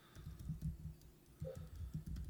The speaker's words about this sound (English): As y'all could hear me furiously typing on the table.